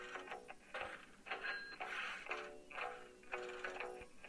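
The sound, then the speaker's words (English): A mobile phone ringtone plays a short music clip: rhythmic bursts of ticking, chiming tones with steady pitched notes, repeating in irregular clusters at moderate volume with no talking over it. “Oops, sorry, I forgot to mute my phone.”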